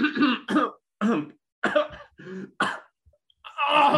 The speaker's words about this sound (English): Stop. I'm actually coughing.